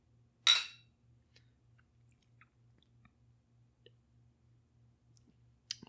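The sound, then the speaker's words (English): Beer glasses clink together once in a bright toast, the ring fading quickly. Quiet follows, with a faint low pulsing hum underneath and another small sharp tap at the very end. “Yeah, it turns out that not too easy to send beer in the mail. Cheers. Cheers.”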